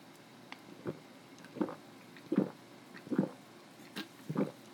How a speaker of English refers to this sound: Three gulps and we're out.